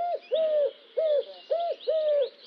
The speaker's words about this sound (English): Sometimes a bird will repeat a phrase, like this recurring pattern of two notes called couplets. And here is a three-note repeated pattern.